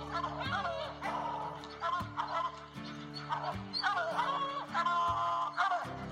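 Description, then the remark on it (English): Hunting hounds bay and bark at a bear in drawn-out, wavering howls, several times over about six seconds, loud above a steady, droning musical backdrop. “Good dog, get that bear. Get that bear in here.”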